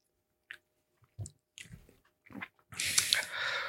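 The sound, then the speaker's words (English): Wet mouth sounds as someone knocks back a shot of liquor: a few short clicks and gulps of swallowing, then a loud, breathy rasp of exhaled air lasting over a second. “So no matter what we do next, we're taking this shot. Cheers.”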